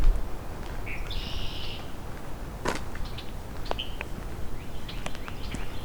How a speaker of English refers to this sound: Blackbirds are showing up.